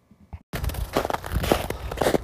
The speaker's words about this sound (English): Crunch, crunch. Crunch, crunch in the snow.